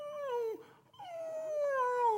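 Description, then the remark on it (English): A person mimics a dog's whimper: two drawn-out, high, nasal whines separated by a brief pause, the second one longer and sliding gently downward. Steady, with no talking. “And he's whining, you know, whimpering.”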